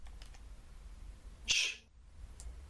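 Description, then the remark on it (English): A single brief, high-pitched cat meow cuts through a quiet, low background hum, lasting only a fraction of a second. No one speaks. “Sorry, I don't know if y'all heard the fucking cat meowing, but anyway.”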